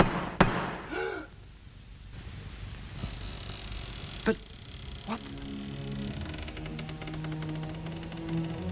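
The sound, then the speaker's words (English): A few sharp, hollow knocks of a stick against a door, spaced irregularly and fairly close, over a low sustained hum and faint tonal background. “You feel that all that I would have to do is to raise my stick and knock, and it would sound like...”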